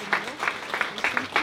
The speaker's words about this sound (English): Give them a big round of applause. Would you stand and show them respect? Let's stand and give them a big round of applause.